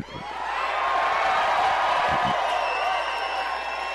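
A large crowd cheers and whoops at Lori Lightfoot's Chicago mayoral victory party as she thanks them, in a loud, sustained roar that holds steady for the whole stretch, with a few high whistles cutting through near the end.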